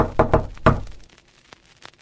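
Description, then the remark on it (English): Three quick, solid knocks on wood, fairly loud, the first two rapid and the third after a brief pause, followed by quiet with a few faint taps. “All you have to do is knock.”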